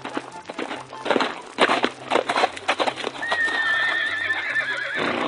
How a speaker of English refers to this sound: Why, when you hear me ride into town on a stallion...